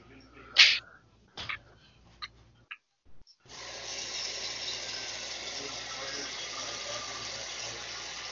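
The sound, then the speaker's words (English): A few sharp knocks and clatters, a brief pause, then a sink tap turns on and water runs in a steady, broad hiss that continues to the end. “Does that sound like a blender to you? Oh, that was a sink.”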